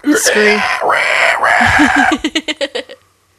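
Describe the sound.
A person imitates a pig squeal: two loud, high, strained squeals, then a quick string of about seven short snorting bursts that stop abruptly.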